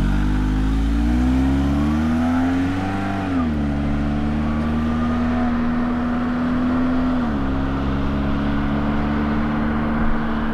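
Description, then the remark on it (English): A car engine revs loudly, its droning pitch climbing and settling as the vehicle pulls away and keeps driving, a steady motor roar throughout with no voices. “Just get in the car this time.”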